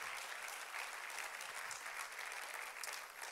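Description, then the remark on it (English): An audience in a church worship service applauds together in a dense, steady wash of clapping that stays loud and even throughout, with no voices rising above it. “One more time, let's put our hands together and give him a hand clap of praise.”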